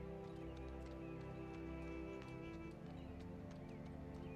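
Horse hooves clip-clop in a loose, irregular rhythm over a steady low rumble, the whole scene fairly quiet; drivers' horses travel across great flat plains on a cold evening, having gone as far as they can for the night.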